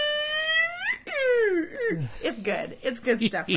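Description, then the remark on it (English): A man's voice imitates a humpback whale call with long, sliding moans that rise and then swoop downward, followed by warbling, wavering tones that break into chuckling sounds. “A humpback whale.”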